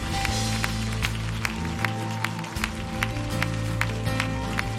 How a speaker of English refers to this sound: We're going to baptize them in Jesus' name. Can we clap our hands for them? Isn't this awesome right now?